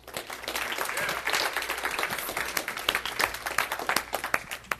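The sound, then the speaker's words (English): Steady crowd applause as a senior college student comes up to speak, a dense patter of many hands clapping at once, holding at a moderate level for several seconds with sharper individual claps poking through toward the end. “So if you would, just join me in a round of applause”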